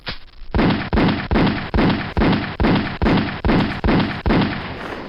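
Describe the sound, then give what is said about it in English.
Ten loud gunshots in a public service message about children killed by gunfire, fired one after another at a steady, evenly spaced pace, each sharp crack trailing off into a brief echoing tail, with no voices. “Now you know how many children die from gunfire on our streets every day. That's 10 too many.”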